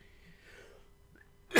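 After a quiet stretch, one sudden, loud, harsh cough, from a cough lingering since the previous week, bursts out right at the end, cut off abruptly. No one is talking.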